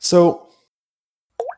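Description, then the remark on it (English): A water glass makes a sharp knock with a brief ringing tone, then after about a second of silence comes a single small, wet plop. “What was that noise? 130 feet. That was my water glass.”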